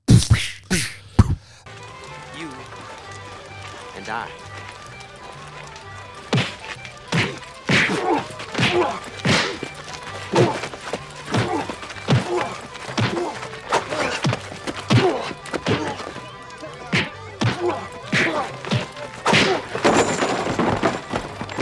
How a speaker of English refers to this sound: Oh, the punches. The punches.